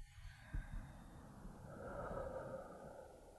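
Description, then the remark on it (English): Heavy, close breathing right against the microphone, a long noisy rushing exhale that swells in the middle with no talking. “Are you breathing heavy in the microphone?”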